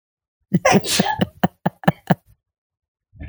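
A loud sneeze with a breathy hiss, quickly followed by a rapid run of four or five short, sharp bursts, then a brief pause before faint sound returns.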